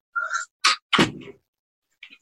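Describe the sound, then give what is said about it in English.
A door is opened to let a cat out: a short squeak, then a sharp rattle and a heavier thunk, followed by a faint scrape a moment later. No one speaks. “I'm going to let the cat out because it's by the door.”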